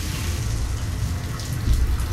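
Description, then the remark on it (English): Shower water runs in a vast shower room in a steady, unbroken hiss, moderately loud, with a low rumble beneath and a slight surge near the end. No one speaks. “Suddenly, with the water shut off, the only sound in the vast shower room was my panting breath.”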